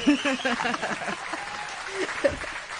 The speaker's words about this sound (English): Yo, we have a dearth of applause today.